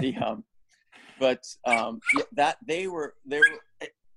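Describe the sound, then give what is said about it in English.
A dog barks in a quick, uneven run of about eight short, tonal yelps and barks, moderately loud, with brief gaps between them. “Doggy, sorry.”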